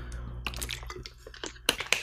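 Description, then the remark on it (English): Someone drinks water, with a run of soft wet gulps and mouth clicks followed by two sharper clicks near the end, all over a low steady hum and no talking. “had to drink my water, my H2O, get hydrated.”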